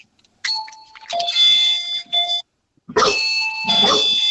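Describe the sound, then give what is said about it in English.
A doorbell rings twice, its sustained electronic tones held for a couple of seconds each time, while dogs bark loudly and repeatedly over the chimes. “Oh, the dogs are barking. And the second doorbell. they think someone's at the door.”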